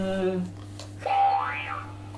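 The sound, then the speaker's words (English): Contestant number one's buzzer sound effect in round one of a game called Drink or Eat: a brief buzzy harmonic tone, then a springy cartoon boing that swoops upward and back down, heard alone over a low steady hum. “Can I have contestants number one buzzer”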